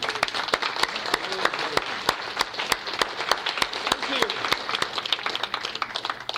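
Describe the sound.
A crowd applauds steadily for several seconds for a pianist after a piano performance, a dense wash of many hands clapping at once, with sharper individual claps popping out irregularly and a faint murmur of voices underneath.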